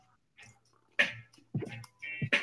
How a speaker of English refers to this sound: Sip my tea for that one.